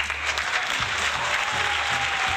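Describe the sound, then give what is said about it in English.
A crowd cheering and applause sound effect: a dense wash of clapping hands with a cheering roar underneath, sustained at an even, loud level for a couple of seconds with no speech. “Of course I did, and the crowd goes wild.”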